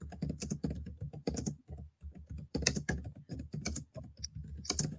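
Loud, rapid laptop keyboard typing close to the microphone, a dense stream of sharp clicks with brief pauses between bursts, heard on its own without any talking.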